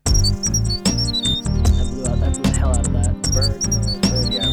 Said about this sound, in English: Bird noise. Very, cause yeah. A bird noise. Yeah, no, you did. Yeah, you did. But the whistling is the thing.